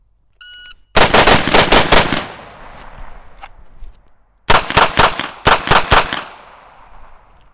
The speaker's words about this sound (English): 3 rounds on each target with the rifle. Transition to the pistol. 3 rounds on each target with the pistol. All right. So 3-3, transition, 3-3.